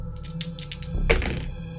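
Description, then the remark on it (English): Two dice, rolled as a desperate roll in a game, rattle in a quick series of light clicks, then land with a louder clattering thunk before settling on a three. No one speaks. “Desperate roll, two dice.”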